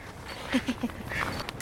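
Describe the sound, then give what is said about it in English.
A few quick camera shutter clicks as photos are taken, three in a fairly even rhythm and one more at the end, over faint outdoor background noise, while hiking along Clear Creek at Prospect Park in Arvada. “That was my camera clicking as I was taking photos.”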